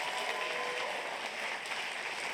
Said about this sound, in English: So why don't we give a massive round of applause